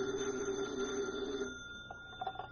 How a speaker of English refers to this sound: Special Agent Jim Taylor is at his desk when his phone rings.